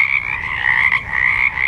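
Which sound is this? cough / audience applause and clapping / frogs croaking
frogs croaking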